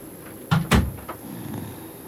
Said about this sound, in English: Knock.